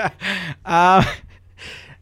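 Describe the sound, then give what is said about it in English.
A voice imitates an audience's gasp: a few breathy, drawn-in vocal bursts rising into a loud, voiced 'ooh', then trailing off into a softer breath. “Just to have the audience gasp.”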